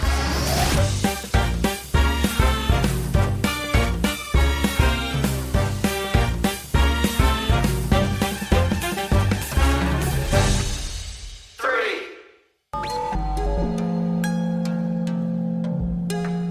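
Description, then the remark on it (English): Sonified electrical impulses from a group of oyster mushrooms talking to each other: loud, glitchy electronic sound with rapid irregular percussive hits and chiming tones, a sudden brief dropout, then steadier sustained droning tones. No voices. “What you're hearing is, in fact, a group of oyster mushrooms talking to each other.”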